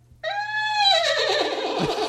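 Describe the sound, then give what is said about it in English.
A loud horse whinny imitated by a voice: a high sustained cry that slides downward and breaks into a shaky, fluttering neigh over about two seconds, with no talking around it. “Do the thing with the horse.”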